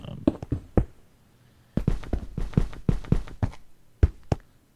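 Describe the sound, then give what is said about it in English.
Video game footsteps tap across glass blocks in quick, crisp clicks, mixed with blocks being placed: a few taps, a brief pause, then a denser run and two final taps, with no talking. “So the glass block should sound a little different. Don't talk for a minute here. It's like a little tap, tap, tap.”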